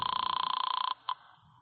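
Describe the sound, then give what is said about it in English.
A telephone rings over the line, a steady warbling electronic tone that runs for nearly a second, cuts off, then gives one brief final chirp before quiet. “I grabbed it and picked up the phone.”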